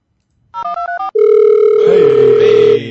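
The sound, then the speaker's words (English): A telephone line tone: four quick warbling electronic beeps, then a loud, steady mid-pitched tone holding for nearly two seconds before cutting off. No one speaks. “They said, it's busy.”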